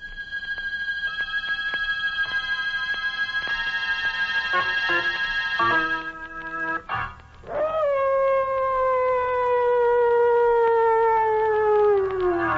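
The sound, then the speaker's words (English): Mad dogs howl in long, loud, sustained wails in a story set in darkest Africa, the last howl drawn out and slowly sliding downward in pitch, with steady tones droning beneath and no one speaking. “John Carradine isn't exactly soothing to your nerves, but put them together in a story set in darkest Africa with mad dogs howling in the background and, whew, well, find out for yourself.”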